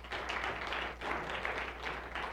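A round of applause from a group welcoming a relatively new member invited up front, a dense, steady wash of many hands clapping that swells slightly a few times and carries on through the whole couple of seconds without any voices.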